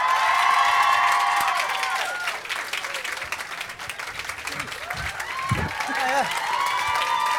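Sustained studio audience applause with cheering and whoops welcoming film star Daniel Radcliffe onto the stage, dense and loud throughout, with high shouts rising over the clapping and a brief dip midway before swelling again.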